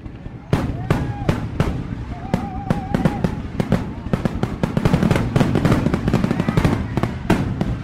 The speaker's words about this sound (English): See, in 2011, the Michigan legislature passed the Fireworks Safety Act, which legalized a wide range of fireworks that were previously banned from being sold. Think like mortars.